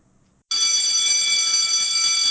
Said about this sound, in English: Well, there's the bell. The show's over.